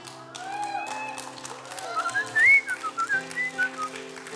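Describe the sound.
A person whistles an imitation of a bird call, bright warbling notes that slide upward and break into a series of short chirps, over a steady low musical drone.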